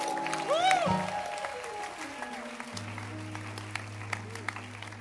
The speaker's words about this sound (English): Let's clap our hands for the dancing stars. Let's appreciate them. And as you are clapping your hands, let's also clap our hands for the choir. And let's appreciate the ushers. In fact, let's clap our hands for everybody.